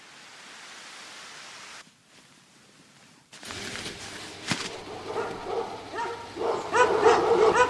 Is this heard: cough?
no